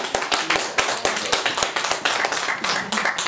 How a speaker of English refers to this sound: Come on, let's clap for it. Let's go.